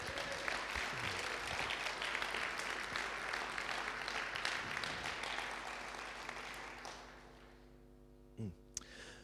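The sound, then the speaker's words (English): An audience claps in a sustained, dense round of applause for about seven seconds, then it tapers off into a faint steady hum with a brief thump near the end. “Can we give these guys a big round of applause?”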